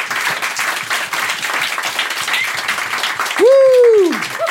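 Steady, dense applause from an audience for a guest on a show fills the whole clip, and near the end a loud whooping cheer rises and falls in pitch above the clapping.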